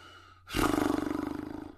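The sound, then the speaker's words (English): A voice imitates a horse's whinny: a loud, abrupt cry that settles into a steady, rapidly fluttering trill, lasting just over a second, with no talking. “Were you making the sound of that horse?”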